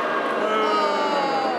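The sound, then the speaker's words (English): A large crowd boos loudly and steadily, a dense wash of many voices with drawn-out, slowly falling tones sustained throughout. “You just got booed by all those people.”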